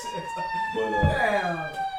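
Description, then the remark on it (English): Emergency vehicle sirens wail steadily outside, their pitch bending slightly as they pass, with muffled voices murmuring underneath. “All right, listener, your punk ass just heard the sirens.”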